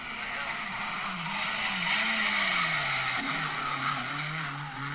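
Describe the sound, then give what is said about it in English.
A Mark II Escort rally car engine roars loudly, its pitch rising and dipping as it revs over several seconds, wrapped in a constant rushing noise of tyres and motion. “Mark II Escort, look. Nice. I'll tell you what, for the listener...”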